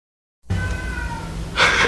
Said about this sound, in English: Listen, man, I got the window open. Hear the cats? Listen. Listen.